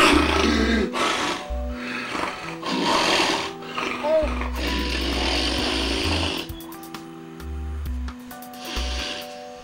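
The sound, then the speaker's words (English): A man snores loudly while asleep at home, in repeated, ragged bursts, each rough inhale broken by gasping pauses of near silence, with a faint hum in the background. “It sounds like he's gasping, like he's actually not breathing for a couple seconds at a time.”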